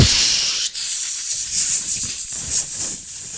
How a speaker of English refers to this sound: There's a lot of snakes around here all of a sudden. No, these aren't snakes. Ow! No, I guess maybe they are snakes.